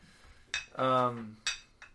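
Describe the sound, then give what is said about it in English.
Glasses clink sharply a few times as two shots of liquor are poured, spaced out over two seconds, with a brief low voiced sound, like a murmur, between the first two knocks. “Hey, pour two shots.”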